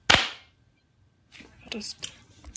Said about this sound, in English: I'll count down from three and then after one we clap, right? Three, two, one.